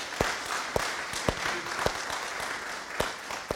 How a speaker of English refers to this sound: Let's just give them an applause. Thank you.